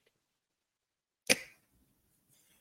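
A single sharp video game arrow sound, a quick bright swish-and-thud that fades within a fraction of a second, surrounded by near silence with no voices.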